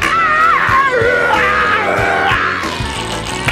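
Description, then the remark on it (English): A loud, sustained human scream with wavering pitch rings out over a rhythmic, thumping music track, the voice straining and sliding across several seconds. “And then I'll do the scream live.”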